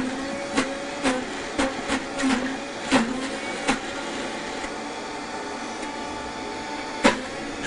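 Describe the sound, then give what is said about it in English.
A blender blending a beet for frosting colour runs with a steady whirring drone while solid chunks knock and clunk against the jar in irregular bursts, with a final sharp knock near the end. No one speaks. “And now I'm gonna put a beet in the blender.”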